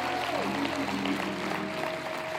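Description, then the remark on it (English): An audience claps a praise to God for the atonement during a sermon, a dense wash of applause running through the whole moment at an even loudness, with a held musical tone sounding faintly underneath. “Can we clap a praise to God for the atonement?”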